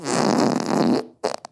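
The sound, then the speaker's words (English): A loud fart with a sustained buzzing tone that changes pitch by an octave for about a second, followed after a short pause by a couple of brief sputtering bursts. No one speaks. “Yeah, okay, here's fart number three.”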